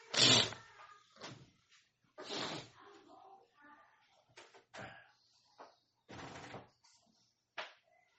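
door being closed

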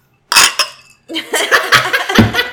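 drinking glasses clinking

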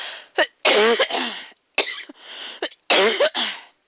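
coughing

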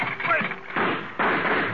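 gunshots

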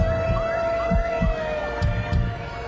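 ambulance siren

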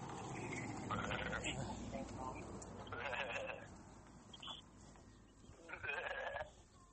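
sheep bleating

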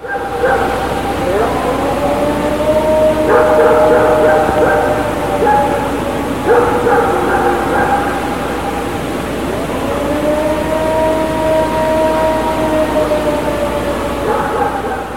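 howl

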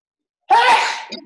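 sneeze

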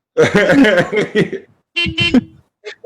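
car horns honking

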